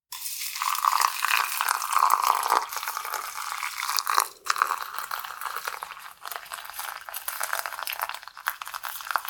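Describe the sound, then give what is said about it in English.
Boiling water is poured steadily over tea leaves in a strainer set in a cup, a continuous splashing and trickling that shifts in tone as the vessel fills, with brief crinkly sounds and no talking. “And we're just going to pour that over our tea leaves.”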